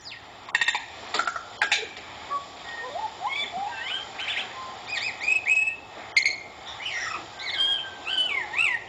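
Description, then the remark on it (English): A tui calls, mixing sharp knocking clicks at the start with bright, chime-like whistles and warbling swoops that continue in a varied, unbroken string. “That is straight up an R2-D2 sounding bird.”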